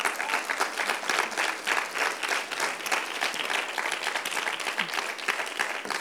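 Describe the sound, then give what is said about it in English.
A church audience gives the word of God a hand clap of praise, steady, dense hand clapping, sustained and fairly loud throughout with no voices standing out. “Come on, let's give the word of God a hand clap of praise.”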